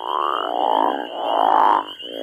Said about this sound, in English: Like there's a crawfish frog that's threatened and endangered in Indiana.